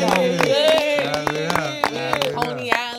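Hands clap in sharp, uneven bursts to welcome a new guest while several voices talk and call out over one another, loud and lively throughout.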